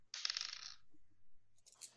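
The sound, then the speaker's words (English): A quick burst of bright clattering as dice are rolled for a bite attack in a game, tumbling and rattling across a table, then a brief pause and a second lighter rattle near the end. “Actually, I'm going to roll the bite attack as well.”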